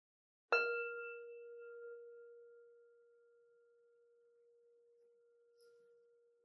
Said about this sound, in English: So we'll take a deep breath together and we'll close this practice with the sound of the bell.